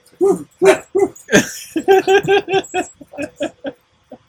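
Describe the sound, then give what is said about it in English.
A quick, rhythmic string of about a dozen bark-like woofs in short bursts with brief pauses, loud, with no talking. “Let the dogs out!”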